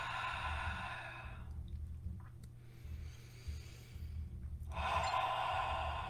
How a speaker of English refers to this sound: Just notice as you breathe at your own pace, taking your own deep breaths, really feeling that dragon fire inside of your belly. Feeling the dragon fire as you open your mouth and exhale.